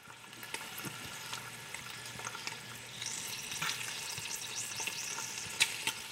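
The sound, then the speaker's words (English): Small pieces of hog fat render into lard in a large aluminum pot over low heat, sizzling steadily: a dense high hiss broken by sharp scattered pops and crackles, growing a little busier partway through, with no voices. “As the fat cooks, it hisses and pops, releasing a golden liquid.”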